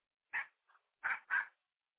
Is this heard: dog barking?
yes